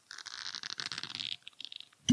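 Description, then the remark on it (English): A cork squeaks and scrapes as it is twisted in the neck of a bottle of Kentucky straight bourbon whiskey, finished in port wine barrels, 86.6 proof, for a couple of seconds, then pulls free with a single sharp, hollow pop and a brief low resonant tone. “We're gonna get that nice pop going.”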